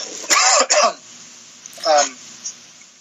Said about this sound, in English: So, excuse me, I got a cough.